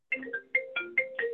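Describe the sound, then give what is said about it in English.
A phone ringtone plays a quick, bouncy melody of electronic tones, each note starting sharply, coming through fairly softly in the background with no one talking. “Somebody could mute his phone ring in there.”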